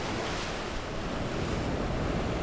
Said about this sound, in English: It doesn't help that we've just been, you know, battered with snow this last week, and then the sea conditions are quite choppy, and we're currently seeing around 1.5 knots subsea.